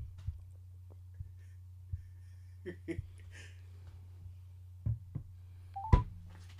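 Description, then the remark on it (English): A string of short phone keypad beeps as someone dials a phone number to call a person, tapped out one at a time at uneven intervals, with a steady low hum running underneath and no talking. “Let's call him. I got his number.”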